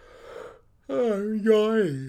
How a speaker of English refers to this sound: You just bust out a yawn real quick. Apologies. Are we boring you? Proof that we do zero podcast editing, because that was staying in.